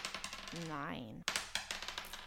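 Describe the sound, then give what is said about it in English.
Hit dice are rolled during a game's short rest, clattering and rattling across a hard surface in a quick burst of small clicks, with a short wavering tone partway through, then more scattered tapping as they settle. “So we'll roll our hit dice and get our health back.”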